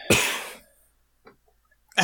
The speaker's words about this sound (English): I was trying to stifle that one cough, because, you know, coughing is outlawed.